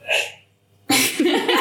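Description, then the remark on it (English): A short breathy burst, then a sudden, loud sneeze that cuts in sharply and trails into a voiced, rough exhale. “Bless you.”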